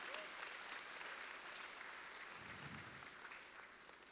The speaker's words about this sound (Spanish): Usted puede emocionarse con esto y darle un aplauso al Rey.